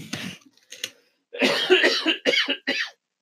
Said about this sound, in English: Why are you coughing?